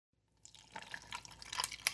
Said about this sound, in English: I need to go pour a drink real quick.